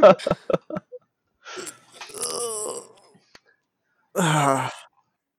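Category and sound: human body sound, a person sneezing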